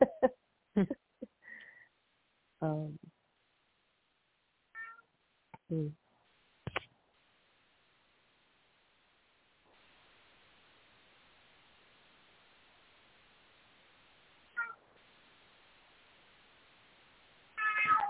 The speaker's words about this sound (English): is asking to go out again. My cat.